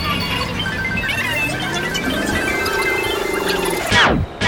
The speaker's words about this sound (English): These are limousine buses.